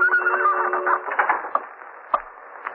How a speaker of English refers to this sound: What's that noise? Just the clock ticking off the minute. You don't think it's a bomb? No. No, I'm sure it isn't.